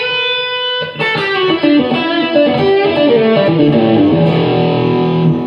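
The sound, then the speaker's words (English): Distorted electric guitar played through an amp model patch, loud: a sustained fuzzy chord rings out, then a busy run of overdriven notes and chords continues steadily, with no one talking. “So that's the only amp model I use when I'm using it. Can I hear that model?”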